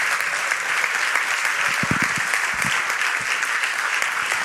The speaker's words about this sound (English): Because we're going to have them pray for you and your generation. And yeah, give them a big hand clap as they come like this.